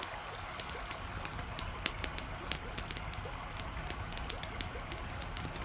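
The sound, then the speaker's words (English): Steady flowing river water rushes in the background while a campfire by the river snaps and pops with irregular sharp crackles, fairly quiet, continuing throughout. “I enjoy the touch of the paddlers and the campfire by the river.”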